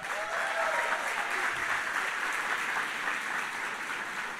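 A crowd claps steadily, a dense, continuous wash of many hands that holds an even loudness for the whole stretch, with no voices standing out above it, welcoming a guest pastor from Venezuela.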